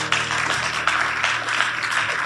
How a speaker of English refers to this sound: Oh, you can clap if you want to.